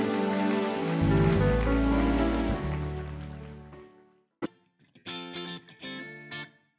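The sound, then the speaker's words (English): Dense, steady audience applause, a hand clap for Jesus during a live sermon at ICANN Community Church, over a low, sustained musical backing, gradually thinning and fading out, followed by a sharp click and a few short, bright musical phrases. “If you're one of them that 2020, 2021, 2022, whatever it is going to be an amazing year of birthing new possibilities in your life, give Jesus a great hand clap. Thank him for it now.”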